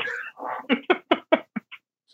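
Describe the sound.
Someone imitates a pigeon: a warbling, throaty opening note, then a quick run of about six short clipped pulses that grow softer and shorter.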